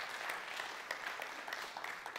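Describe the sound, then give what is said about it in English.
A crowd at a sermon applauds steadily, many hands clapping at once in a dense, continuous patter with a few sharper claps standing out, holding an even level throughout. “Come on, let's give a hand clap right there.”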